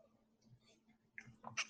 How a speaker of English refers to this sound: Excuse me, take a sip.